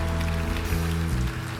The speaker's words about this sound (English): Can you give Jesus a hand clap right now? Amen, amen, amen, amen, amen.